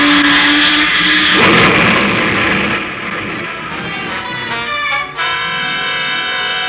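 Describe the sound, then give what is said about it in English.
A small plane's engine roars loudly, its pitch wavering and sinking as it strains, with a brief sputtering catch near the end before droning on, as the plane goes down and crashes. “Your plane crashed.”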